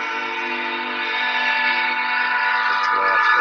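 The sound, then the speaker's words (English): A train whistle blows one long, loud, steady chord that holds unbroken for several seconds, with nothing else audible around it. “It's a train.”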